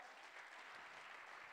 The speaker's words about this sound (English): Clap your hands and bless the Lord this morning.